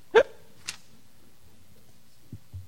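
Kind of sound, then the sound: human body sound, hiccups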